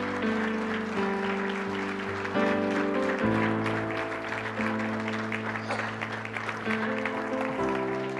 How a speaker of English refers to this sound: Give God a humongous hand clap of praise right now.